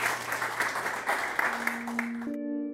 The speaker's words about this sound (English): One more big round of applause, and thank you guys for coming out and being a great audience.